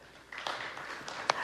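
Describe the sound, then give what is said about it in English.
A few scattered handclaps from an audience, sparse and uneven rather than full applause, with one sharper clap standing out near the end over a low murmur of room noise. “Will you clap?”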